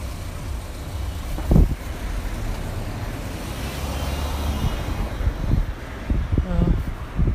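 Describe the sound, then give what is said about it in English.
Steady outdoor traffic rumble at an intersection with wind buffeting the microphone, cars and heavier vehicles passing, and a few brief muffled bursts of sound near the middle and end. “This is some car action.”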